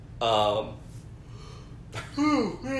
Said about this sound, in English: Team yawn today.